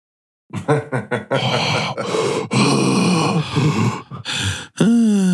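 Loud, close breathy gasps and groaning exhales, ragged and uneven, like someone panting heavily right into a telephone receiver, ending on a rising strained vocal groan.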